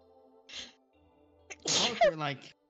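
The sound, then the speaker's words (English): A person sneezes once, loud, with a sharp breathy burst and a voiced trailing 'choo', preceded by a quick hissy intake of breath against a faint steady hum. “Bless you.”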